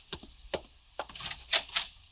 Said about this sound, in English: I open the door for you, Excellency.